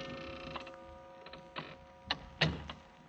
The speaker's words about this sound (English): It was long after midnight when my office door slowly opened.